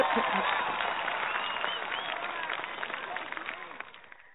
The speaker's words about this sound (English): Let me give you your applause here to clean this up.